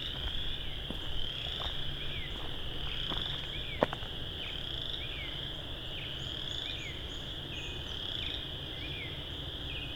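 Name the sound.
tree frog calling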